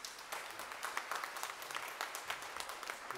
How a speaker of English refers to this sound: A round of applause for these two guys.